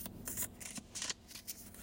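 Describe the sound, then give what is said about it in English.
Cards being shuffled again during a card reading, a rapid series of crisp riffling bursts and soft slaps in an irregular rhythm, fairly quiet with no voices. “Be patient because I do not force cards to come out. All right. Let me go ahead and shuffle again.”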